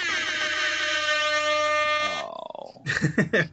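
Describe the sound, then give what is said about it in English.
A loud, sustained air horn blast blares for about two seconds, then sags downward in pitch as it fades, followed by a few short, throaty vocal bursts. “Don't groan the air horn.”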